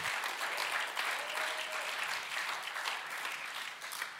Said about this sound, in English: Woo! Oh, come on, if someone claps, let's all clap. Come on, let's all clap.